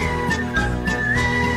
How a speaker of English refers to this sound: Whistle really loud. You whistle.